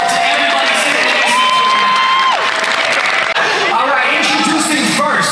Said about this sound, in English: We wouldn't be here without all of you. So please, let's give a round of applause.